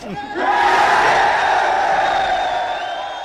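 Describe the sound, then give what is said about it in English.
A crowd erupts into loud, sustained cheering and shouting in reaction to a plan just laid out to them, after a brief voice at the start, the mass of yells holding steady for about three seconds before easing slightly. “So he laid out the plan, and everyone's cheering.”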